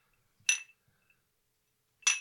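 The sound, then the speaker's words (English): Two bright glass clinks, like drinking glasses tapped together in a toast, about a second and a half apart, each ringing briefly with a crisp high tone against near silence. “Those are some good clinks.”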